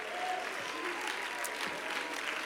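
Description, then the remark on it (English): An audience claps steadily at a Sunday morning church service, a dense and continuous patter of many hands at a fairly even, moderate loudness throughout. “Somebody ought to be clapping their hands right now.”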